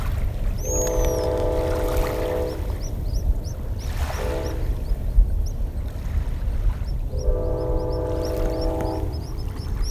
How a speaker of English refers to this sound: And we'd see the, you know, good-sized flocks in the water chirping away. They've got this cool little chirping sound they make. We've got a nesting colony of pigeon guillemot talking here on Anderson Island.